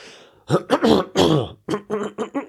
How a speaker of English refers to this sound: Prepare yourself for this. That was just me clearing my throat.